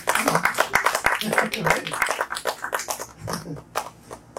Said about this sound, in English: Give yourselves a round of applause tonight. Come on.